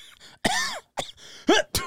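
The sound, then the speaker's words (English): A person vocally imitates the noise he makes during sex: a drawn-out, voiced moan followed by a few short, sharp coughs, with brief pauses between the bursts and no other talking. “Mine's a moan followed by a I cough.”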